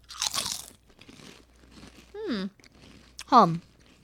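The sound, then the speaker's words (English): A loud, brief burst of crunching as several people bite into Lay's potato chips at once after a countdown from 3, followed by softer chewing and a couple of short vocal murmurs. “So the tradition is he counts down from 3, and then we all crunch at the same time.”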